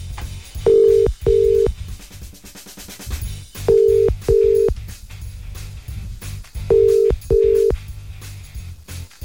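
An outgoing phone call rings on the line: three sets of double ringback tones, evenly spaced, loud and clear over a low, steady background hum, with no one answering.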